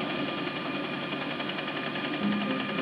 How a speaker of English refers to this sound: It's a helicopter made from octopuses. This one sits upside down at the top to provide tentacle propellers.